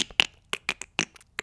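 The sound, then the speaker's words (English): A quick, uneven run of about nine sharp clicks made with the mouth and tongue, crisp and bright, with brief silent gaps between them and no talking. “Isn't it fun when you just find a new noise that your mouth can make? Just like that was my mouth.”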